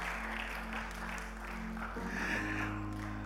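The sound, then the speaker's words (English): An audience claps for the Lord steadily throughout, a dense wash of many hands with no pauses, over sustained low organ-like chords that shift pitch partway through. “What are your hands doing? Clap for the Lord.”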